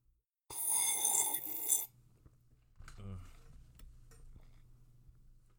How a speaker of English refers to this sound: It's 12:33 in the morning. I'm drinking coffee. Oh, by the way, ready? ASMR coffee sip.